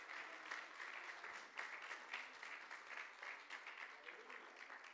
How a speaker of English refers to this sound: Praise God. Let's clap our hands and thank God for that today.